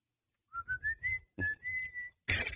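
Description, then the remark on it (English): A series of short, steady whistles signalling pitches at a ballpark, in quick succession, in two rhythmic groups separated by a brief pause, followed by a sudden burst of broad, noisy sound at the end. “I loved listening to those whistles, and then I wanted to hear, the only thing I wanted to hear was the next pitch and the swing of the bat.”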